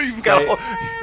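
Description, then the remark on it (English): A short, high-pitched wailing cry that rises and wavers for about a second, seemingly voiced by an adult imitating a baby crying. “starts crying.”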